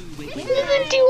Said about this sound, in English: Shh, kittens.